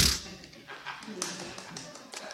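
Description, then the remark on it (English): One person at the back claps slowly and steadily, about six or seven sharp, fairly quiet claps evenly spaced across a couple of seconds, with a faint murmur of background noise. “Someone's clapping at the back like, it's summertime, hurry up.”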